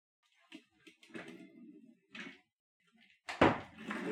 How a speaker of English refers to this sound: Hang on just a minute. I'm going to shut this door over here.